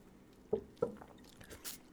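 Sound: drinking water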